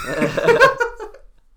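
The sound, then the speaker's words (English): A single throaty burp, loud and voiced with a low rumbling tone, lasts under a second and then trails off into quiet. “Excuse you. Me? Yes. I didn't burp.”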